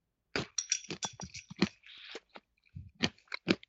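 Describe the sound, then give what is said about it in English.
Loud crunching of someone chewing dry, crisp muesli, an irregular run of crackly bites with a brief pause before a few final crunches. “It's hard to chew.”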